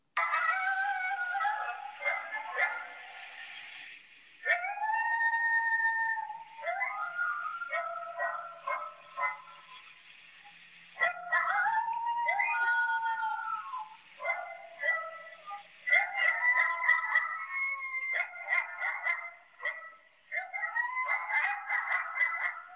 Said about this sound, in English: And then I'll get into a couple where you can hear the individual coyote calling. And you'll notice it's just a much higher pitch than that wolf call.